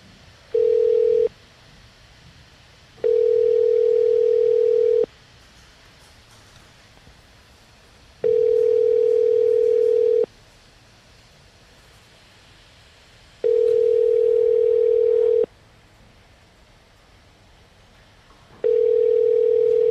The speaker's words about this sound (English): Looks like we might have lost him. Let me try to call him. Let me try to get him back on the phone.